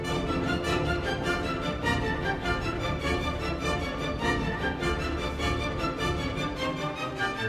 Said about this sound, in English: In fact, take a listen to this symphony. I think it's coming up back here.